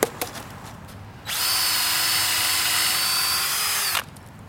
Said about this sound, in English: Okay, one row down. Nice. So your plan is to drill all the holes and then insert the dowels.